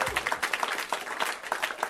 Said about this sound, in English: Yay, guys, welcome. You should clap again. You should clap again.